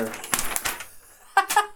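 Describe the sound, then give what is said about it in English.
Paper crinkling and crumpling in a few crackly bursts, then a short pause before another brief rustling burst, with a voice faintly mixed in. “Paper behind me.”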